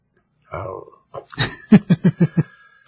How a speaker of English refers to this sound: Nope. Hiccups.